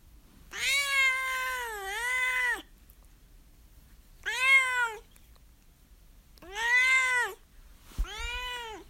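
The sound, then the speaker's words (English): A pet cat named Duarte meows repeatedly, about four drawn-out, clear calls, the first long and wavering, separated by short pauses, with no talking. “and now it's time for Duarte's Corner, where, of course, my cat Duarte will give his opinions on the book.”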